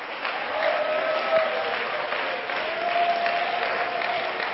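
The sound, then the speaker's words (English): An audience claps steadily in dense, sustained applause, with faint shouts and cheers rising through the wash of hands for several seconds. “Somebody clap your hands and shout unto God.”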